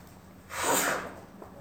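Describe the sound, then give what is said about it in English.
A single sneeze bursts out, a breathy, hissing blast lasting under a second, moderately loud, with no talking around it. “Bless you.”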